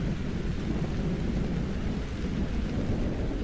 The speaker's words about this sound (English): Imagine, it's 2021. Rain is pouring in Washington, and a 74-year-old Vietnam veteran emerges from the shadows with a confession.